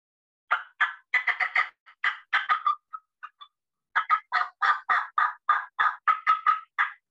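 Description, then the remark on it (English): Aggressive hen turkey cutting played on a turkey call: a rapid, broken run of sharp, loud clucks, a brief pause, then another fast irregular burst, clear with no talking. “And when you're cutting, it's, you know, real aggressive, broken rhythm like this.”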